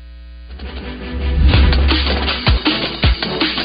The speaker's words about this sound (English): It appears we have lost some connection out there in Hoover